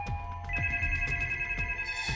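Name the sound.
telephone ringing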